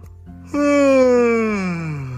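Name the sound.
big yawn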